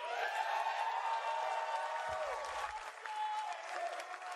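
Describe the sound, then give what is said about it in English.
A large crowd at a reveal of the Avengers video game applauds and cheers steadily, a dense, continuous wash of clapping with raised voices mixed in, holding at an even, loud level throughout. “But before we go, the crowd is riled up.”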